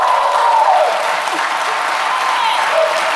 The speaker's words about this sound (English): For those in the podcast, it's some non-Asians clapping too.